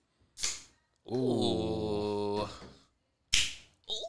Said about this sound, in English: Let me crack open my seltzer water. Seltzer water.